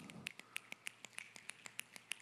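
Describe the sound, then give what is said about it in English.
An audience snaps their fingers in a steady, crisp patter of quick clicks, imitating light rain starting to sprinkle as part of a group imitation of a North Carolina thunderstorm. The snaps are fairly soft and evenly spaced, with no talking. “Then it starts to sprinkle.”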